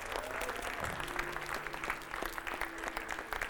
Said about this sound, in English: Church, give them a big round of applause.